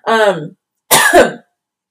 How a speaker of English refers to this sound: Why am I, like, coughing?